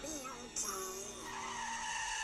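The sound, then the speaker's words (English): A car's tires screech and skid in a long, shrill squeal lasting a couple of seconds as it comes crashing in, rising in intensity midway before sliding to a halt, loud. “Just as Donald says they'll be okay, they hear the car coming crashing.”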